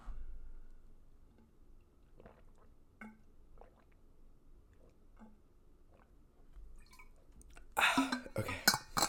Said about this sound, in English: Let me first drink my water.